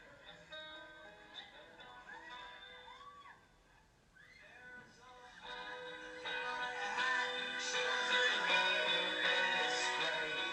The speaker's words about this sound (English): So this is the song. It's a song called ….